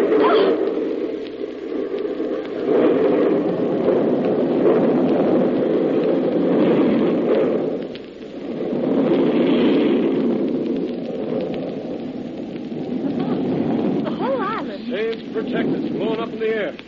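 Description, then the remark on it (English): A bomb explodes, wiping out everything on an island: a long, loud, continuous roar, swelling and fading in waves for the whole stretch, with a voice briefly breaking through near the end. “I fused one of their bombs before I left the island. Everything on the island wiped out.”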